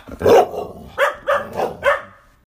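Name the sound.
dogs barking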